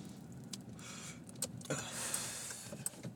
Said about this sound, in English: I think I found a pretty decent system for recording in my car, since that's basically the only time I have to do episodes during the week.